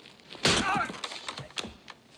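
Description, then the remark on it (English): A hard, crunching punch slams into a nose with a sharp crack, followed by a few smaller thuds and scuffling knocks over the next second and a half. “And slammed in the nose.”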